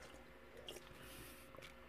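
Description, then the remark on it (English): Someone takes a big sip from a can of lime-flavored drink, with wet slurping and a couple of soft gulping squishes over quiet background noise. “Big sip here.”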